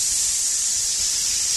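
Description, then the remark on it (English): A voice imitates a truck's fuel injector spraying with the accelerator floored: one steady, loud, breathy hiss lasting under two seconds, bright and airy like pressurized spray, with no other sounds around it. “When Mark's driving his truck and his foot's on the floor, the injector is going like this.”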